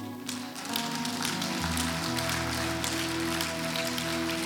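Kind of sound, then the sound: crowd, audience applauding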